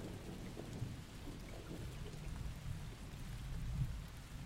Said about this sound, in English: You hear the rain. You hear the rain.